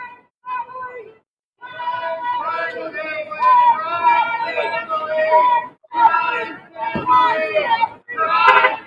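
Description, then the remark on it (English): A crowd outside a courthouse chants "Crime family" in loud, ragged bursts as Ivanka Trump walks in from her car in the morning, the shouted phrases repeating with short pauses between them and the voices slightly out of step with one another. “They can't even chant in unison.”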